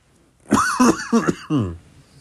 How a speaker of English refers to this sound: And pardon me for the cough. My voice has been like strained for some reason.